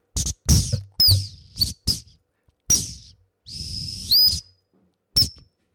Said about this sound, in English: I just have me and my whistle, my trusty T12, on which I'm going to play you a tune.